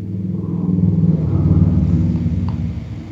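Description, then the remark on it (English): A car drives past a house with a deep engine rumble that swells to a peak midway and then slowly fades as it moves off, with no voices present. “And just like that car that passed your house, it went right on by.”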